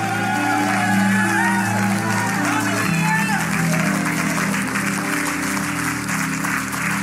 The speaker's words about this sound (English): Come on, those of you in the second sanctuary, get up on your feet and give God some praise right now. Lift up to God a voice of triumph. Clap your hands, all you people. Give God a shout of triumph.